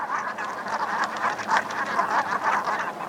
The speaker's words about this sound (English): And so here's I think this is a call from a flock of Brant.